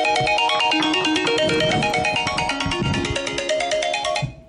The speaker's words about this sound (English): It's amazing how the phone has a tendency to ring just when you don't want it to.